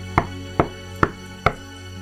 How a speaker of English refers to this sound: like footsteps or someone knocking on doors? Someone knocking on a door, like the front door of this place.